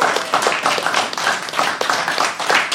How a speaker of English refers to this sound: Give them a round of applause, everybody.